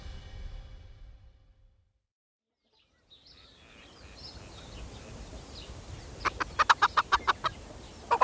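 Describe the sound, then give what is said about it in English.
A group of Father Damien's chickens clucks in a quick run of sharp, rhythmic calls as they are called to feast on corn, after a soft outdoor lull, with a low rumble of ambient noise underneath and no one speaking. “Here, my chickens. Come and feast on your corn.”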